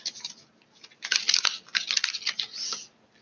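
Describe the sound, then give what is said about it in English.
Crisp, papery riffling and flicking of tarot cards being shuffled, a continuous rustle with a few sharp snaps, no voices. “Let's keep shuffling.”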